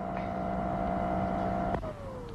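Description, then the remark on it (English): A vacuum cleaner runs with a steady, loud droning whine, then a sharp click cuts it off and the motor's pitch slides downward as it winds down. No one speaks. “That's why he kept the vacuum on, so we shouldn't hear.”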